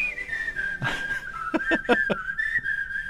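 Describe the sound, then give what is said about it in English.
A clear whistled melody holds a bright, steady tone with slight pitch bends, played over a song's backing with a burst of sound and then several rhythmic percussive hits beneath it. “This version goes to it. I'm almost positive it does. There it goes. Hear the whistle?”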